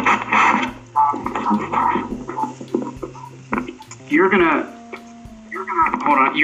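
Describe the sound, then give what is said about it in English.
Voices talk over a distorted, radio-like feed with a doubled, echoing quality and faint lingering hum tones, as if the audio is looping back on itself. “I'm getting a horrible echo.”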